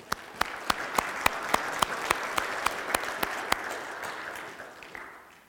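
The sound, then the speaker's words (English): A crowd applauds all the volunteers steadily, with a dense wash of clapping punctuated by sharp individual claps at a regular rhythm, then gradually fading out over about five seconds. “So actually, I would like to give a round of applause to all the volunteers.”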